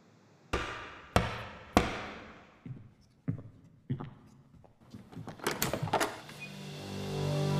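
Three loud, evenly spaced knocks ring out, followed by three softer knocks at a slower pace, then a flurry of clattering hits fading into a low sustained tone.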